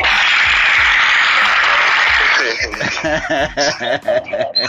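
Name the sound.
applause sound effect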